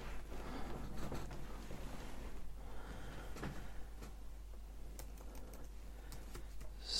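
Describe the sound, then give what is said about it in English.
Keys clatter on a computer keyboard as someone types a Google search for themselves, in a steady stream of quick taps with a few sharper clicks, over a low constant hum, and nobody speaks. “would you like to listen to me Googling myself?”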